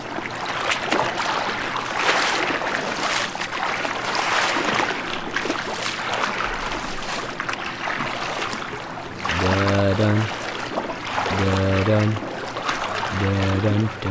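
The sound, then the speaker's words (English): Water sloshes and washes steadily around a boat in the middle of the ocean in a continuous, fairly loud rush, with a few short voice-like tonal bursts breaking through near the end. “Nothing like calling for a ride when you're in the middle of the ocean, eh?”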